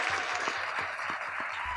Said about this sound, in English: I think one thing that really signifies just the power of that audience. So we hear clapping in that song. We hear a good, just some good energy that they're giving the artist. And that's from the artist mics, because you're not miking the audience,